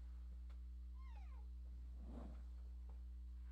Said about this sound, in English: And before we go, here's the Christmas cat. Here's Oscar.